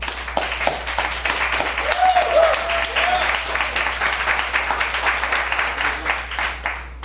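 A debate audience claps to vote for the winner arguing for rebooting Game of Thrones, steadily for about seven seconds, a dense, even patter of many hands with a few brief vocal whoops rising above it around the second and third seconds.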